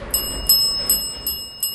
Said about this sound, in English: We have something in the discussion tonight called a civility bell. In case you've never heard a bell before, this is what a bell sounds like.